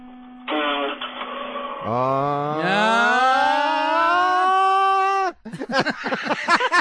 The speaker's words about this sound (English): It's the solenoidal part of the starter that as the solenoid is engaging is making that noise. And then as soon as it does that, the starter begins to turn and cranks the engine over.